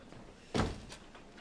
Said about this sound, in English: Shut the door.